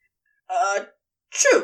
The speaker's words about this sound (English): Aww, you do realize that your snake sneezes are awfully cute.